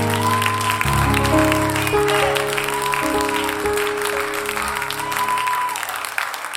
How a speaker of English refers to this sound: Why don't you go ahead and clap your hands one more time?